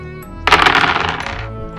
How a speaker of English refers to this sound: Roll them four dice and tell me, basically, if you get any doubles.